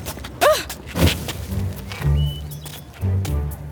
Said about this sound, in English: I'm stomping! Put it out! Put it out!